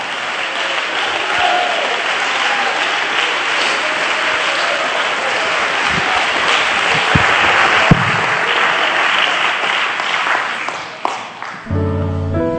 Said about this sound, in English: Put your hands together and stand and clap and shout unto God, because you're in the house and you're in the body.